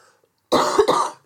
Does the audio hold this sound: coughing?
yes